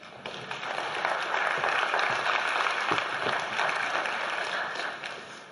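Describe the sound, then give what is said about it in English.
A crowd applauds steadily for several seconds, welcoming the host's wife out to be interviewed, a dense, sustained patter of many hands clapping at once, fairly loud and even throughout with no voices standing out. “So give her a round of applause.”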